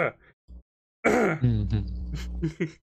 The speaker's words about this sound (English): Why'd you cough like you were having a stroke?